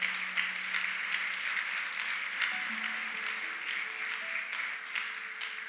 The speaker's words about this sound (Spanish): ¿Cuántos lo creen? Si lo creen, dale un aplauso fuerte, Señor.